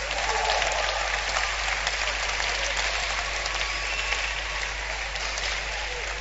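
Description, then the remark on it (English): A crowd listening to a speech claps steadily at the speaker's invitation for about six seconds, a dense, even wash of many hands with no clear individual beats and no pause in the applause. “If you are clapping, feel free and clap.”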